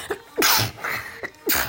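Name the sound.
double sneeze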